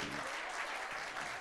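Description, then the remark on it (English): A crowd claps steadily, a dense wash of overlapping handclaps at constant loudness throughout, with no voices standing out above it. “So this is where you should be clapping like your hair is on fire.”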